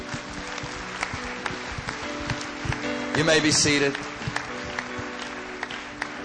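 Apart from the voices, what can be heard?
audience applause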